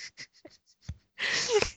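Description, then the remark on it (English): A voice imitates heavy breathing: several short, quick breaths, then one long, loud, raspy exhale lasting about half a second. “Yeah, like, do they ever tell you to stop breathing in their faces?”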